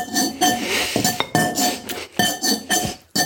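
Ceramic bowls are tapped in a quick series of ringing clinks, each note sustaining over the next, picking out the tune of Jingle Bells. No one speaks over the tapping.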